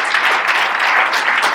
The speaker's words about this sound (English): But cheers. I want to say thank you. Let's hear another round of applause. Thanks, guys.